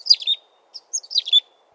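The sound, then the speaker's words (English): A chickadee sings two short bursts of bright, twittering high notes separated by a brief pause, clear against a quiet background. “And to this day, Chickadee has a very simple, very pure song, a little whistling tune of Phoebe or Hey, Sweetie.”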